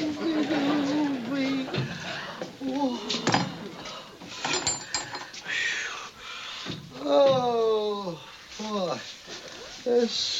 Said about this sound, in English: Full of dynamite, Jimmy's watching Otis as he unlocks the door to the cell.